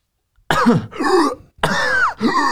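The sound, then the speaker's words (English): Someone coughs and clears their throat in four harsh, raspy bursts with short gaps between them, loud, with no speech. “You need to like cough it up. Can you cough?”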